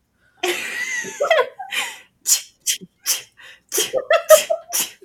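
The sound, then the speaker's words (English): A person vocally imitates their own rapid string of sneezes as an example, about eight short, sharp bursts in quick succession after a breathy opening, loud, with a hint of laughter mixed in. “Everyone kind of has their own little like thing, but it's just many sneezes in a row and quick.”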